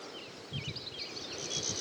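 A quiet dawn chorus of birds twittering and warbling continuously, with a few short, low bleats from sheep underneath and a cockerel; no one speaks.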